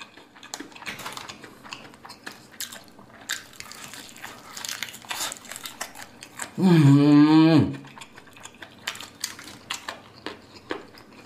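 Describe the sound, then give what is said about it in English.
Crunchy bites and wet chewing of spiced chicken, a steady run of irregular crackling clicks, broken by a loud, sustained voiced "mmm" of enjoyment partway through. “All right, that cruster, that is one flavorful chicken.”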